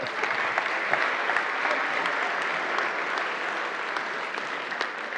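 Steady applause from an audience fills the whole stretch, a dense, sustained patter of many hands clapping at moderate loudness with no voices breaking through.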